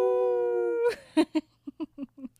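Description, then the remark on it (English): A voice imitates a howl: one long, steady, tonal note held for almost a second, then a string of six short, choppy vocal bursts, fairly loud. “And then from out in the distance, they hear a howl.”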